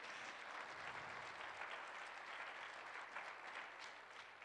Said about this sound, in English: You know, you better clap better than that because it sounds like you're not plugged in really.